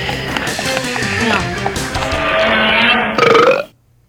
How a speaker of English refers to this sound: I like that burp with that at the end.